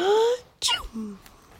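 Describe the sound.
A voice acts out Granny's super duper sneeze while reading a picture book aloud: a drawn-out, rising wind-up breath followed by one sharp, explosive burst and a short trailing tail.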